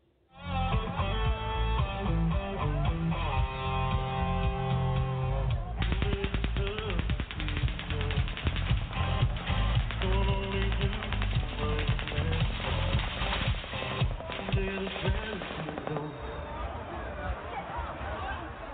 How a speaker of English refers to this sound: just after 10 p.m. last night, Sunday night, when the gunman began unloading hundreds of rounds into the crowd. A concertgoer captured the video of that moment.